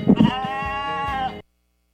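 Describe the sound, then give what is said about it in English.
A single sheep bleats, a loud wavering baa lasting over a second before cutting off into silence. No one speaks. “Okay, so how many of you raise sheep?”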